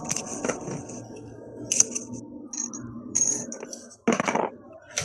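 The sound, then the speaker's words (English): Hit dice rolled to regain health during a short rest clatter across a hard tabletop in a quick burst of sharp clicks and rattles, fairly loud, with a second scattered tumble near the end and faint murmuring in the background. “So you can roll your number of hit dice for the day if you want to return it.”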